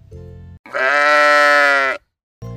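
A single loud, drawn-out bleat from a sheep named Adela, lasting over a second, rich and harmonic, framed by brief low bleating fragments just before and after. No one speaks.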